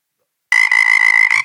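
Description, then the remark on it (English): A single loud frog croak rings out after a brief silence, a sustained buzzy, ribbed call lasting about a second before cutting off. “I thought we were going to miss the frog for a second.”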